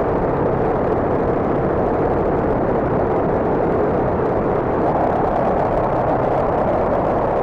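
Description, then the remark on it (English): A dense, steady modular synth FM drone run through stereo filters, a Schlob SVF and a Dopefer A124 Wasp filter, with a gritty, rumbling texture, its filtered midrange churning constantly without breaks for the whole stretch, loud and alone with no voices. “And now we have some stereo filter action with the Schlob SVF and the Dopefer A124 Wasp filter.”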